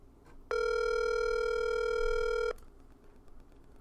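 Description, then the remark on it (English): A single two-second ringback tone from a phone line on an outgoing call, a steady buzzy electronic purr that starts and stops abruptly, with faint line hiss before and after and no voices. “It's ringing.”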